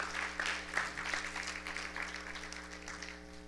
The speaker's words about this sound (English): Dale un aplauso a Dios porque Let's applaud bueno. the Lord.